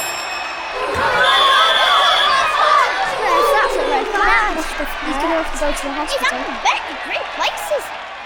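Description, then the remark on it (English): A large football crowd reacts to a player breaking his arm with overlapping shouts, groans and excited chatter, a dense, fairly loud wash of many voices that swells early and keeps bubbling with scattered exclamations to the end. “Let's all pretend to be in the crowd reacting to my dad's football injury, adventurer.”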